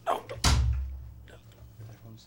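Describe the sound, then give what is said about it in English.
A door is pushed open and bangs shut with a sharp, heavy thud, followed by a low rumbling decay, while people talk quietly. “You gotta push forward when you open it. Sorry, I'm not used to freaking doors.”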